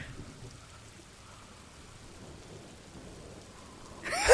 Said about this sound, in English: Just doing wind sounds? Just doing subtle wind sounds? I love it.